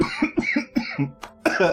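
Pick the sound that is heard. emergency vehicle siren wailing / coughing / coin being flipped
coughing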